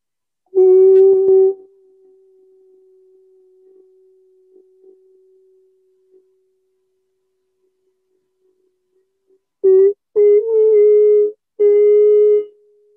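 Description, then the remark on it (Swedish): A voice holds one steady note in a single exhalation, loud at first, then fading into a long, quiet drone before swelling again in several strong, sustained bursts near the end. No words are spoken. “I ett enda utandetag i en och samma ton för att verkligen få känna det.”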